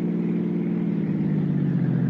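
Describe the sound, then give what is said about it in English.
A car called Betsy heads north on the coast highway after Westwood and Santa Monica, its engine droning steadily at speed, a low humming rumble with road noise that holds at a constant, fairly loud level throughout, with no voices. “We cut out through Westwood, then Santa Monica, then hit the coast highway and headed north.”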